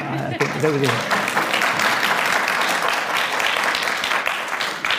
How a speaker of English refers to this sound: You nearly got a clap, actually, I think.